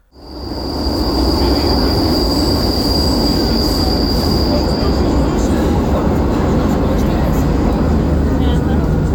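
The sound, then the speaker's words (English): A Lisbon metro train rumbles loudly and steadily through an underground station, a high wheel squeal ringing over the roar for several seconds before fading as the train keeps rolling. “Quickly unpacked, everyone marked their side of the closet, and off we went to the metro station.”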